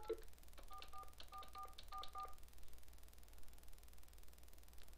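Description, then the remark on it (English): A quick run of touch-tone keypad beeps as a local phone number is dialed on a phone using its speakerphone, about seven or eight short dual tones in rapid succession, fairly faint over a steady background hiss, then fading into quiet static. “Now I'm going to dial a phone number, and I'm going to do”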